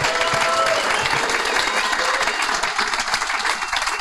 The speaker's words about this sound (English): And I think we all owe you a huge round of applause for your efforts, for your work in this. So thank you. Thank you all.